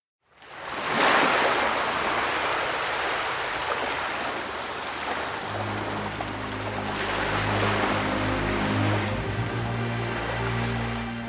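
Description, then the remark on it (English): Gentle waves wash steadily onto a brown sandy beach in a continuous soft roar, joined about halfway through by a low, steady droning hum. No one speaks. “A young boy who looks to be about 2 years old is on a beach as water gently laps around him on the brown sand.”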